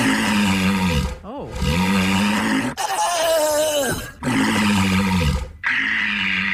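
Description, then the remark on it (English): Walruses groaning in a series of long, loud, rough bellows separated by brief pauses, some deep and gravelly, one in the middle rising into a higher, wavering tone. “Which, by the way, these are walruses groaning.”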